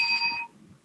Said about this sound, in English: But besides the point, this is a bell for Italian national team.